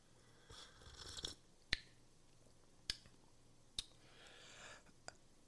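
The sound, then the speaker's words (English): Quiet slurping sips of hot coffee, airy breaths of suction, punctuated by a few sharp clicks and taps spaced about a second apart, with no talking. “Let's sip and then hop on the big, comfy Give Zero couch together.”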